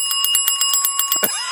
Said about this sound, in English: Where's the ding, ding, ding sound, Rain? We need it.